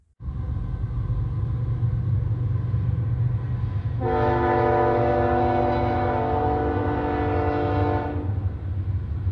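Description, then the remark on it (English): A Union Pacific freight train rumbles steadily past at night, its loud, low roar continuous throughout, while a long horn blast sounds in the middle for about four seconds before fading back into the rolling rumble. “Seconds later, that's Union Pacific.”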